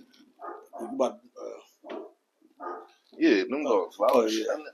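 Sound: dogs barking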